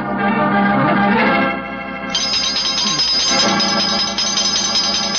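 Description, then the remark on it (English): A doorbell rings loudly and insistently for several seconds, a bright continuous jangling tone that shifts pitch partway through, with no voices over it. “And if any more clients come wrenching at my doorbell, I shall ignore them.”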